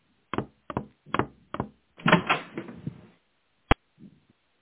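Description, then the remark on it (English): A wooden closet door is opened: four quick rattling knocks at the handle, a longer scraping swing, then a sharp click and a soft thud. Fairly loud, with no voices. “Tanya opens the closet door and finds Mr. Pinscher unconscious.”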